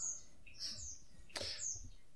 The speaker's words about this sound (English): For purposes of my remembrance, I love the birds. They're very good, kind of tranquil.